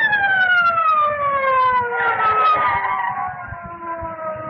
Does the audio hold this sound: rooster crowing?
no